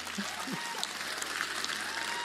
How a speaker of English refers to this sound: I mean, that's a golf clap. I mean, this is like extraordinary. Come on.